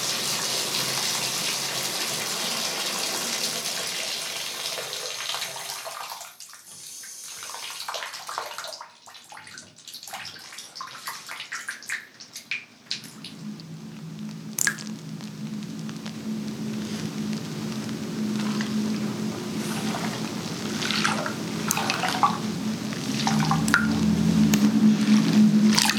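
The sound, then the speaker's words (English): A tap runs steadily into a bathtub filling for a bubble bath, a hissing rush of water that fades out after several seconds, followed by splashes and then soft jazz music playing on its own. “When the water is done running, the sound of jazz covers over the rest.”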